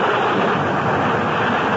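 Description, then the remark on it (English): A steady, dense roar of storm wind and rain outside, broad and unbroken for the whole stretch, with no voices and no distinct individual gusts or drops standing out. “I don't want you to go back in the storm like this.”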